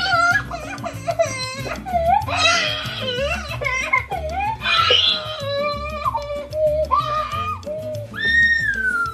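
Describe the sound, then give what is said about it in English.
A young child screams and cries in a tantrum after a screen show is turned off, loud high-pitched wails rising and falling in long sobbing bursts, with a steady low hum running underneath. “We might still be nursing the scars of that naive moment when you tried to turn off Dora or SpongeBob or Daniel Tiger or Elsa or Sophia or Peppa or Pokemon or Preston playing Minecraft or Buddy or T-Rex or Thomas, and the screaming that followed.”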